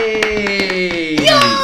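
A handful of sharp, irregular hand claps ring out close by over about a second and a half, mixed with a sustained tonal sound like a voice holding a cheerful note.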